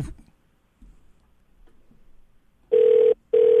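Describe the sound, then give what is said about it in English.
An overseas telephone line to a private line in Singapore rings with two long, steady electronic tones separated by a brief gap, loud, after a stretch of near silence with faint rustling. “You should be able to hear ringing in a second, hopefully.”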